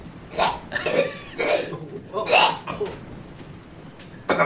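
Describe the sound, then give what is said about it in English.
A run of harsh, wet hacking coughs bringing up phlegm, several throaty bursts spaced unevenly over a few seconds, fairly loud, ending with one more sharp hack after a pause. “As you go to speak, you cough up this nasty, vile-looking phlegm ball.”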